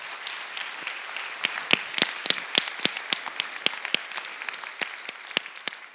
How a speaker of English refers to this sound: So let's give ourselves a round of applause on that.